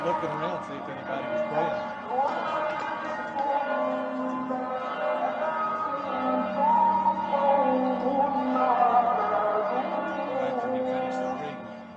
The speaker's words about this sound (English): So that last bit of the video, I hope you could tell that you can hear the Muslim call to prayer and the bells ringing at the Church of the Nativity at the same time.